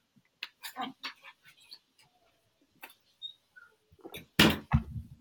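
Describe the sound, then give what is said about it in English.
Scattered knocks and shuffling movement as dogs are let out, then a door shuts with a loud thud and a short rattle near the end. Brief faint squeaks occur in between, and no one speaks. “I'm going to pause you for 1 second because I'm going to make my dogs go out and close the door.”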